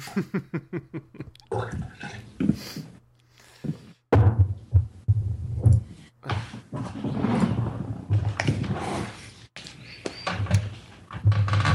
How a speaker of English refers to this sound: Do you take a sledgehammer to your kitchen to get that water, or how do you explain the noises? I pour the water out of a Brita filter.